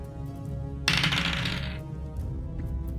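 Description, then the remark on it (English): Dice clatter and rattle across a hard tabletop in a bright, scattered burst lasting about a second, then settle into quiet with a few faint ticks; the dice are rolled for an acrobatics check with advantage and come up 13. “Not a great roll. That is a 13.”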